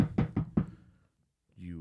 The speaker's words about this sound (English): Naturally, you guys head down to room 852. And the door is ahead of you. I'll knock on the door.